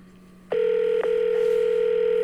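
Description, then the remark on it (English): A telephone ringing tone on a call line as a call is placed to Big Cat: after a brief low hum, a loud, steady electronic tone starts and holds at one pitch, broken by a single faint click. “It's just, but now we'll fast forward just a couple minutes into the podcast to them calling Big Cat.”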